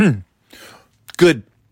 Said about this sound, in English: Not even 10 seconds in and I'm clearing my throat. Like fucking Gary Delabate.